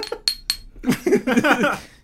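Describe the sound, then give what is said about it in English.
Two quick, bright clinks of glasses touching in a toast, ringing briefly, followed by people talking and murmuring together. “Cheers to that.”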